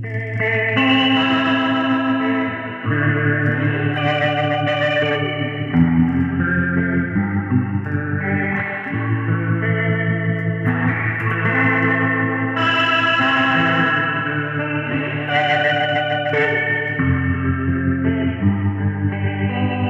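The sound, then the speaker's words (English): An electric guitar plays through a Boss '63 spring reverb pedal with its Roto (Leslie speaker) effect on: sustained, ringing chords drenched in spring reverb with a swirling, chorus-like modulation. The chords shift every few seconds at a steady, loud level, with no voices. “That and with that spring reverb, man, I mean.”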